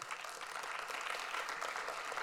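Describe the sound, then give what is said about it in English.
An audience claps steadily for a couple of seconds, a dense, even patter of many hands at moderate volume with no voices above it. “Well, my notes say that when you read that quote, Pastor Mike, they're going to clap really hard, and I think you missed it, so I'm going to do it again.”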